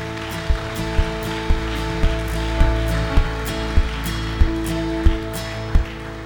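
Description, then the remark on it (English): A church crowd applauds people who answered an altar call, in a steady wash of clapping, with louder, evenly spaced claps or beats about every two-thirds of a second over a sustained musical drone underneath. “And everyone said, can we give those people a round of applause?”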